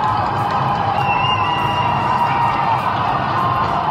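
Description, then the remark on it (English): A large crowd in Melbourne, Victoria, cheers and whoops continuously at midnight, celebrating the end of the city's sixth lockdown: a dense roar of many voices with occasional higher shouts and a faint whistle riding over the steady, loud din. “Yeah, so that's the sound of some of the celebrations from videos people have posted on social media as the clock struck 11:59 p.m., pretty much like New Year's Eve,”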